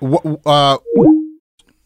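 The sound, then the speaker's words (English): A phone call ending as the caller hangs up: a brief burst of a voice on the line, then a short electronic tone that steps down in pitch and cuts off into silence. “Okay, he hung up.”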